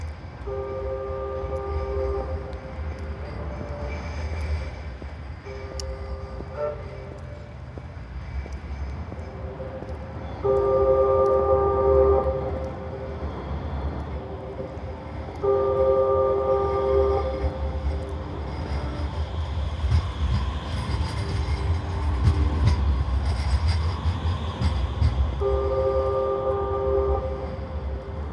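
Trams in Manchester, UK, rumble steadily along the tracks as they shuttle backwards and forwards. Bright two-tone horn or chime signals sound again and again every few seconds over the low mechanical drone. No one speaks.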